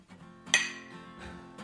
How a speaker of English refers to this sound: Or China. Clink of China.